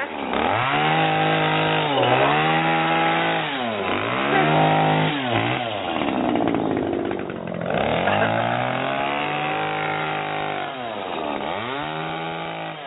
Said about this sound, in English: Oh, my. That has already started. It's just a nightmare. Because everybody's got these, it's like these big petrol lawnmowers, these gas lawnmowers, like you call it gas, and they're worse than electric ones.